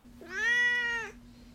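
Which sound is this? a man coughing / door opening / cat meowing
cat meowing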